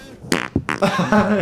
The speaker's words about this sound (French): Voilà, il y a quelqu'un qui a pété, je suis obligé de relancer le jingle.